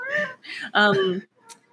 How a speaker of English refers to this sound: and there he is. There's my son. The stock standard, he's just like this little meow.